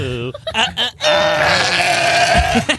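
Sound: sheep bleating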